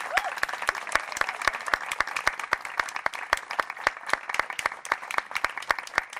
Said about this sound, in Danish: Vi skal lige klappe og sige tak. Vi klapper lige af.